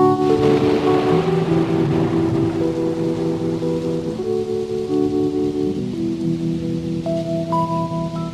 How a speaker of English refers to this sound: Thunder, bring in the thunder.